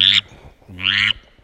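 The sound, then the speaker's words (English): Two low, raspy drake grunts blown on a duck call bought at Walmart, a short burst followed by a longer, buzzier one. “You know, it'll do a duck, you know, a drake grunt.”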